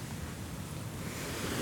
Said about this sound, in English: Okay, so we're just coming onto the beach and it's a bit calmer than last night. It's just very, very calm waves lapping up against the shore.